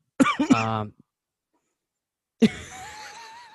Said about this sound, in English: Well, I just coughed.